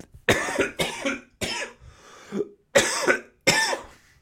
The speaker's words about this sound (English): God damn it. That cough really fucked me up. That really came out of left field too.